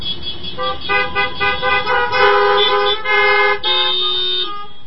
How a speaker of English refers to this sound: Due to the COVID-19 pandemic, today's message was recorded in our church parking lot. So the horns you hear will be our amens and affirmations.